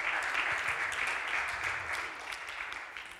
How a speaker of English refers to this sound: So why don't we give ourselves a huge cheer and God for all that He's done.